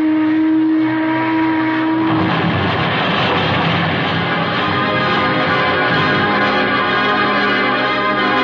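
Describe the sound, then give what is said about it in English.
A passenger steamboat, the Boston boat, draws near: a steady low whistle blast sounds for about two seconds, then a loud, continuous churning rumble of engine and water fills the rest, with no voices. “But just as I reached it, I heard the Boston boat again.”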